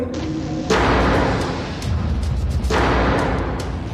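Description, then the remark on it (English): A window in an abandoned house slams shut twice, about two seconds apart, each a loud, sharp bang followed by a brief rattling decay, with no voices. “You heard a window slam.”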